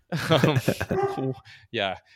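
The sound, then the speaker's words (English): A person talks briefly, then a single sharp bark from Kobe, a rescue shepherd dog, rings out, short and fairly loud, followed by a moment of quiet. “It's my dog feels strongly about this as well.”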